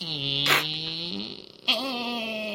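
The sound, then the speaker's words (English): A voice imitates a bolt sliding slowly open: a long, drawn-out creaky tone that rises slightly, breaks off with a brief noisy burst, then resumes as a steady strained squeak. “Yeah, and then there's just, as opposed to all of the locks on the tavern door, there is one single bolt that very slowly goes...”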